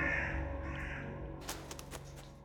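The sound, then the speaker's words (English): A bird gives a few harsh, croaking caws in short bursts near the end, over a steady low background drone. “Then the bird said, "Nevermore."”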